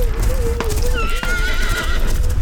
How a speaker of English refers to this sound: Just then, he heard the black steed panting and blowing close behind him. He even fancied that he felt his hot breath.